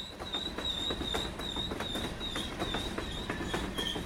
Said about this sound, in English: Here comes the train.